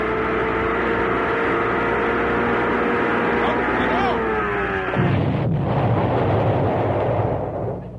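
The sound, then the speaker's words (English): An 88 engine with a propeller, run without water, drones steadily and loudly, then about five seconds in it blows up in a sudden violent burst that becomes a harsh, roaring clatter until near the end. “That's what happens when you don't run them with water. They'll blow up.”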